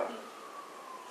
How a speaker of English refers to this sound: Sirens in the background.